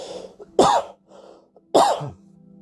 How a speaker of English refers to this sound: Excuse me, I just had to cough.